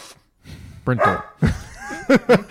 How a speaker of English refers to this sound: You guys picking up that that barking? What are you barking about, Bowie?